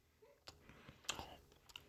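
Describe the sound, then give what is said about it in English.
Chewing with a few sharp, crunchy clicks and soft wet mouth sounds, quiet and irregular over a couple of seconds, no talking. “Let's eat this together.”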